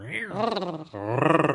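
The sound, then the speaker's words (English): A woman's voice imitates a tiger's roar: two drawn-out, growling vocal bursts back to back, fairly loud, with no other sounds around them. “Oh my, she's like a tiger.”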